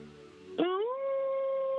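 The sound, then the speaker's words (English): A voice imitates a wolf howl, one long sustained call that swoops upward and holds steady, sounding thin and band-limited as if heard through a phone line, with no talking. “Fucking howled like a wolf on everything.”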